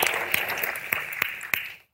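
A crowd applauds with dense, steady clapping that holds for nearly two seconds, a few sharper claps standing out, before it quickly fades to silence.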